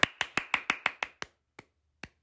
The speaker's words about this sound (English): The clerk involuntarily applauded, but upon immediately becoming aware of his impropriety, stopped altogether.